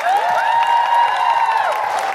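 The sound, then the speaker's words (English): An audience at a live Guilty Feminist show in Birmingham applauds and cheers steadily for Catherine Bohart, a loud, dense wash of clapping with high, gliding whoops and whistle-like cries rising above it throughout. “So just for the podcast, we're not going anywhere, but just for the podcast, a big round of applause for Catherine Bohart, everybody.”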